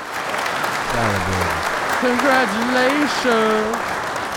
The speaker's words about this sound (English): Yeah, let's get some applause. Let's get some congratulations. BET Awards. Congratulations. Clap it up for Diddy. Very deserving.